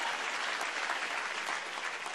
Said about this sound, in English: Thank you, man. Give this man of God a round of applause.